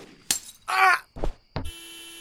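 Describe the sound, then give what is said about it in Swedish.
A window pane breaks in a series of sharp impacts and crashes, ending in a sustained, ringing tinkle of glass, with no voices. “Du lade en ruta i sönder.”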